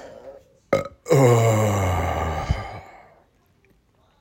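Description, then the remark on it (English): A long, loud, drawn-out burp rumbles for about two seconds, preceded by a short sharp sound and fading into quiet breath afterward. “I'm going to copyright the podcast burp, so that from now on, it's going to be patent pending.”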